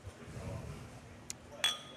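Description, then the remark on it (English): A beer glass of Helles lager clinks in a toast: a light tap, then a brighter clink with a short ringing tone, over a quiet low rumble of background noise. “Now, let me just go ahead and say cheers on that.”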